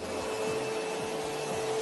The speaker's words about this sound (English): So next, Mr. Trump, I'm going to need you to vacuum. Okay. So where's the little release?